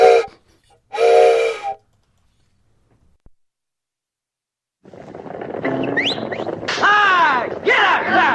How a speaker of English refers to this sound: So I'm going to blow this train whistle I got from a good friend, Brown Clodfelter, and it's going to signify that it's time for us to hop on that mule train, the Americana Central Time Mule Train, live from Columbia, Tennessee, y'all.